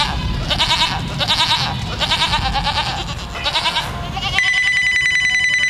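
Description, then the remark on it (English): A goat-bleat ringtone repeats several times in wavering, nasal bursts, then gives way to a steady electronic ringing tone near the end. “Never heard this ringtone before.”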